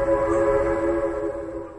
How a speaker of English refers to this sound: At night, I used to hear the Long Island Railroad horn blow, and I tell you, going to bed at night, I'd cry my eyes out.